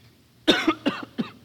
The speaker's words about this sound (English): now you're coughing because you lied. No. Fuck you. You're choking on your own lies.